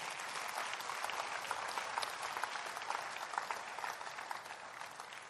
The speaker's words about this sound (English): Clap for Jesus.